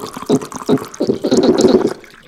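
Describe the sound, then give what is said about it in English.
Wine glugs into a glass in uneven bursts, a gurgling liquid pour with a bright splashy top that swells and settles over about two seconds, with no talking. “I'm pouring some more just wine over here.”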